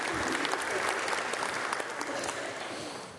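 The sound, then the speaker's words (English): A crowd applauds itself after a clapping and snapping rhythm exercise, a dense, even wash of many hands that stays loud throughout and fades slightly toward the end, with no voices standing out. “Give yourselves a hand.”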